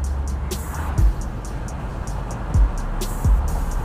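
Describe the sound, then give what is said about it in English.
Steady, loud road roar fills a car cabin at highway speed, with deep rumble underneath and a few soft thumps from bumps in the road at irregular intervals. “All right, so we took this thing on the highway to see how the Echo Auto deals with all of the noise when it's maxed out.”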